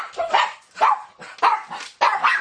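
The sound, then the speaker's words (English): A dog barks at a package delivery four times in a steady series, each bark sharp with a short pause between, loud and clear with no talking over it. “Nope. It's just a package, dogs.”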